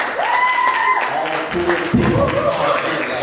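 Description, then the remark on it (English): A crowd at a convention claps steadily over a few seconds, with loud, dense applause mixed with whoops and shouting voices from the audience. “Give yourself a round of applause and make an effort.”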